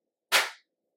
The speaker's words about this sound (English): Okay, so I'm gonna clap again just for syncing purposes.